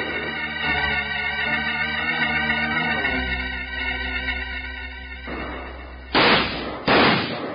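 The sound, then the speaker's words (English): Two loud, sharp gunshots crack out close together near the end, fired in a shootout, following several seconds of sustained, droning orchestral music. “Keep shooting, man. They can't hold out now forever.”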